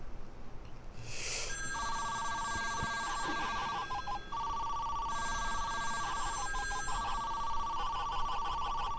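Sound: telephone ringing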